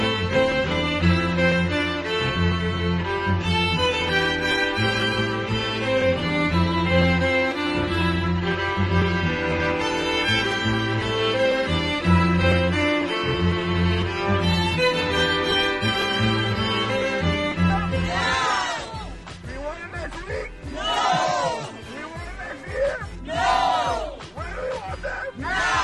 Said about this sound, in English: Scenes from a picket line where members of LAUSD's service union and their supporters are on strike today. The service union includes bus drivers, custodians, special ed assistants, and other school staff.